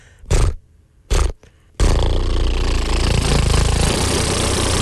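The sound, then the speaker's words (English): On Magic 95.1 radio, a voice imitates a lawnmower: two short sputtering bursts and a brief cough, then a loud, steady, rumbling engine drone that holds for several seconds. “And can we hear your lawnmower real fast?”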